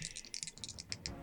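Two physical percentile dice, rolled as a d100, rattle and tumble across a hard surface, a quick burst of light, sharp clicks that thin out into a few scattered taps as they settle. No one speaks.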